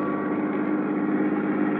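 A new car drives into town in Sarasota, Florida, with a steady, unbroken engine drone and road rumble, holding an even loudness throughout. Low humming tones run beneath the noise, and no one speaks.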